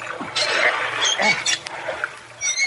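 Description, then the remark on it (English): A car door stuck because its lock was rusted by 2 or 3 days in a river is forced, with continuous scraping and grinding metal broken by short squeaky creaks over a few straining seconds, plus a low steady hum underneath. “Here, help me open the car door”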